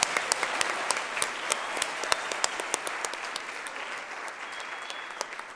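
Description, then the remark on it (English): An audience applauds steadily for the speakers and worship team, many hands clapping in a dense, even patter with sharp individual claps standing out, sustained at a moderate level for several seconds without fading. “First off, if we could just give another round of applause to our speakers and our amazing worship team today.”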